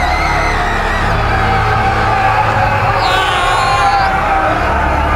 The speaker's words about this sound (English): The light from the sky became suddenly brighter than normal, and within a few moments, people began screaming in pain. Without another word from the Spartans, most of the people rushed back into their homes, most screaming in agonizing pain.